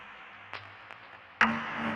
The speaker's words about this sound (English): You can yeah, there we go. We can really hear that phasing.